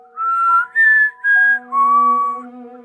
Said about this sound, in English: Nothing unusual happened until we heard whistling right in front of us where we were walking, so we stopped.